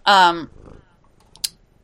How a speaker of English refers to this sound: hello, kitty. There's a kitty. Hi. Sorry, everybody. There's a kitty. And that means we have to stop and greet the kitty.